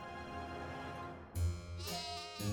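Sheep bleat in a wavering, nasal chorus in the meadow where the shepherd Paris tends his flock, with one call swelling louder partway through and another starting near the end, with no voices.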